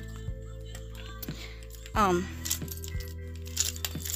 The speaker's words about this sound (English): That's my makeup. I'm just dumping out of this little bag.